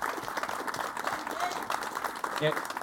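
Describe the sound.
An audience claps steadily, a dense, even patter of many hands that holds for the whole stretch, with a few voices and a short call rising over it near the end.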